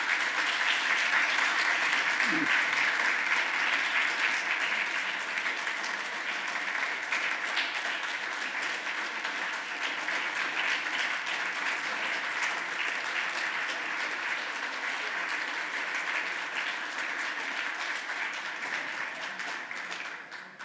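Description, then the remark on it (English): A large audience gives a standing ovation for the man who put the program together, a sustained, dense wash of clapping that holds steady and loud for about twenty seconds before starting to taper at the end. “Before I begin, why don't we have a round of applause for the man who put this whole program together,”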